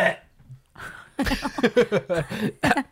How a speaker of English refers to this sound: That was part of me fucking clearing my throat because the hot sauce. Right? It's still in my throat.